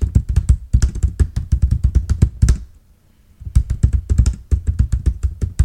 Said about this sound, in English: Okay, here we go. I'm just typing this up here real quick.